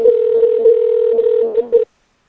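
A steady electronic ringback tone from an outgoing phone call to Greg Palast, one long continuous buzzing ring heard loud over the line before it cuts off abruptly.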